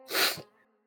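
A single loud, breathy sniff, a sharp nasal intake of air that lasts about a third of a second before trailing off into quiet. No one speaks.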